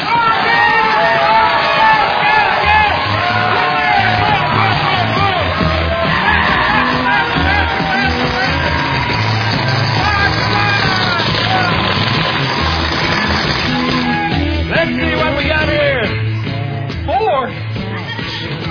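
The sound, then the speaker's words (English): An audience cheers and yells continuously in a cheering competition during a tabletop game, with overlapping shouts and whoops sustained loudly for the whole stretch, tapering slightly near the end. “Ready, set, you got to cheer, go!”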